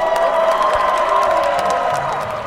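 A crowd cheers and shouts excitedly at a Robotics League award announcement as the Washington Irving team is announced among the winners, a loud, steady roar of many voices with high-pitched whoops and yells sustained throughout.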